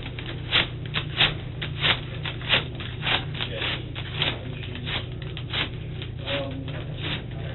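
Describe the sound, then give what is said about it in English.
Tape being pulled and handled, a series of short rasping rips and crinkles at irregular intervals over a steady low background hum. “Doing the same thing with the tape.”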